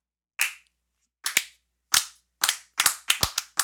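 Sharp hand claps with no talking, slow and spaced at first, then quickening into a rapid burst of about nine crisp, snappy smacks.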